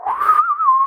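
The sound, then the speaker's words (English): A brief snippet of the whistled theme from Sergio Leone's spaghetti western The Good, the Bad and the Ugly, of the Man with No Name trilogy: one fairly loud whistled note that starts breathy, rises slightly, then holds clear and steady, with no talking. “But Sergio Leone, one of the Spaghetti Western Man with No Name trilogy movies. Which one could it be? The whistling one.”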